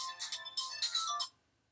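A short burst of a mobile phone ringtone, bright and tonal with quick electronic notes, playing clearly for just over a second before cutting off into silence.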